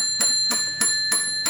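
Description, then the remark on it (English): A bell rings in quick, evenly spaced strikes, about five in under two seconds. Each hit is bright and clanging over a steady, shimmering metallic tone. Fairly loud, with no voices. “You're not supposed to be ringing the bell at this point, Clarence.”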